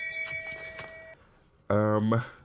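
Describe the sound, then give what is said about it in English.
A shame bell sound effect rings once for horror fans who haven't seen a recommended horror film, its bright metallic tone holding steady for about a second. After a short pause, a loud voice calls out briefly. “And that one deserves a shame bell if you are a horror fan and you haven't seen it.”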